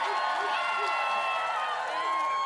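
A steady roar of crowd cheering and applause, given as a vote by applause on a contestant's chances to win a spinning challenge, fills the whole moment, with many voices shouting and whooping together at a loud, even level and no pause.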